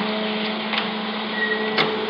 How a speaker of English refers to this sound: Kill that dryer, will you?